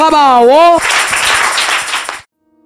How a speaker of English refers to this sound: Why don't you clap for the Lamb of God?